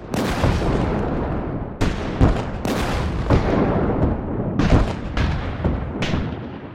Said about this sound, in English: And that's when the cannon fire begins.